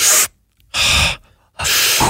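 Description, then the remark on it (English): Three loud, forceful breaths, a short huff followed by two longer, airy puffs, separated by brief silences, with no talking. “Which one's a huff and which one's a puff?”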